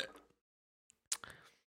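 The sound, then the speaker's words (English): A short, quiet slurp of someone sipping a drink, with a faint lip smack before it and a brief breathy trail after. “I'll take another sip.”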